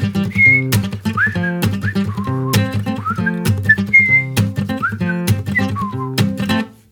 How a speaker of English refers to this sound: And sometimes I whistle.